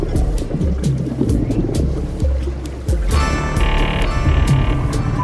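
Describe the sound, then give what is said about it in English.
A boat's port engine, started while fishing for sharks with mackerel bait, runs steadily with a low, throbbing rumble, joined after a few seconds by a louder, buzzing mechanical whine layered over the drone, with water noise underneath. “I got the port engine going.”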